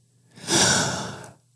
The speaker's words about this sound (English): I'm breathing a lot because that's exactly how I need to feel, you know?